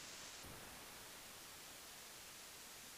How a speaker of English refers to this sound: There's nothing coming out of your mic, dude. It's static. Nothing but static.